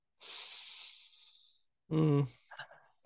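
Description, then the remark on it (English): A person imitates the deep breath an old man over 100 years old took when asked his secret to longevity: a long, airy, hissing inhale lasting over a second, then a short pause and a brief, loud voiced exhale with a faint trailing breath. “He just took a deep, deep breath.”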